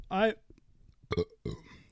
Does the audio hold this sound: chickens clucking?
no